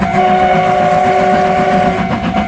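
The whistle of Taiwan Railway steam locomotive CK124, built by Japanese engineers in the 1930s, blows one long, steady, loud blast over the rumbling chug of the train on the Pingxi line in northern Taiwan, holding for nearly the whole moment before fading slightly.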